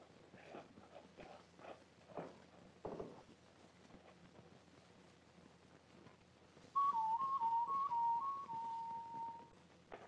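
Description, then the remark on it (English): A person whistles a wavering, warbling call mimicking a night bird as a signal, starting suddenly after faint rustling footsteps and holding for a few seconds, clear. “And when you get on the far side, whistle like a night bird.”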